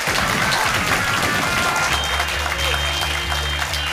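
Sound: audience applause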